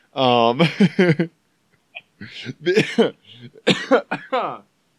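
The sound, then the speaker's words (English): A person with a cold coughs several times in close succession, loud, with rough voiced bursts and short gaps between them, and a throaty, vocal edge to some. “I have a cold. I'm going to be coughing a lot on this episode.”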